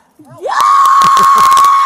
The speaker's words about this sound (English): Here's some more primal screaming for her.